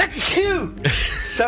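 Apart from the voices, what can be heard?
sneeze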